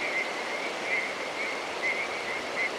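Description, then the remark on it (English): A chorus of tree frogs at Little Rock Creek as the light fades at dusk. Short, high-pitched trilling calls repeat every half second or so over a steady, hissing background, with no voices. “As the light fades, the sound of tree frogs crescendos into a chorus.”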